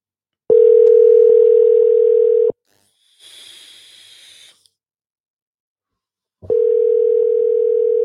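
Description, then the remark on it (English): Ringback tone of a phone call ringing on the line that does not get through: two long, steady electronic beeps about four seconds apart, with a short burst of hiss between them and no voices. “Y'all hear the phone ringing?”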